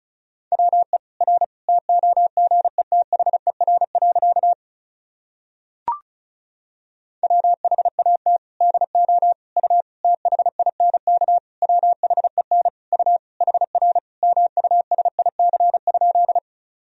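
Fast Morse code at 35 words per minute sending practice sentences from the top 300 words and abbreviations, in a single steady mid-pitched tone, rapid dots and dashes keyed in two long runs separated by a brief pause and a sharp click, with no voices.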